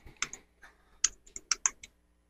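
Irregular clicks of typing on a computer keyboard, a quick burst of about nine keystrokes, moderately loud, with no voices.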